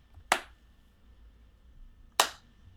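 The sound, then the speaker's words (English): Two sharp, separate sarcastic hand claps nearly two seconds apart, slow and deliberate, each a crisp smack followed by quiet, with no voices present. “Oh no, sarcastic clapping. The worst kind of clapping.”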